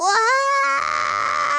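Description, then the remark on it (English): A high, wavering wail of someone crying outside a window at Starwood Park early on a Sunday morning, one long sustained sob that rises briefly, then turns strained and harsh before easing off. No glass breaking stands out. “It sounded like broken glass and somebody crying.”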